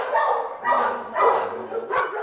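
Dogs bark in animal shelter kennels, about four loud, overlapping bursts in quick succession with a steady hum of background noise and no talking.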